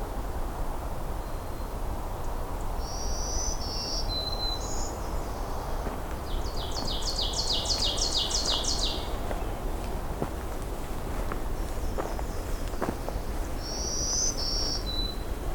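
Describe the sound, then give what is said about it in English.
Partial black-throated green warbler song: a few thin, buzzy high phrases, repeated several times over a steady rushing background noise, with no talking. “It's a partial black-throated green warbler.”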